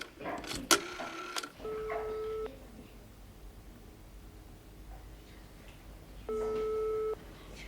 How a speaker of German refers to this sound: Ich rufe im Präsidium an.